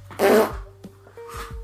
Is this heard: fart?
yes